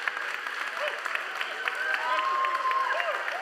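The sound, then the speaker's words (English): A large church audience claps steadily for about 10 seconds while scattered voices shout praise and cheer over it, a dense, sustained wash of applause to God with occasional whoops rising above the noise. “Church, if you agree with what I've said thus far, would you give shouts of praise and an applause to God for the next 10 seconds?”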